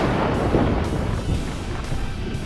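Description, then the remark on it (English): Thunder roars in a deep, continuous rolling rumble, loud and heavy in the low end, surging slightly but never breaking off, with no voices present. “Thunder roared and rolled and echoed within the stones as the air swirled into a vortex of darkness with Millicent at its center.”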